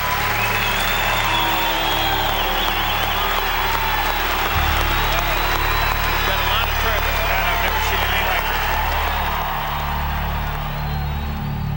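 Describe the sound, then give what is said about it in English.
A large golf crowd applauds and cheers John Daly at the 72nd hole without letup, a dense, steady roar of clapping with scattered shouts and whoops, holding loud for the whole stretch over a low background rumble. “There was a huge just outpouring of noise and cheering, and Daly was just soaking it all up.”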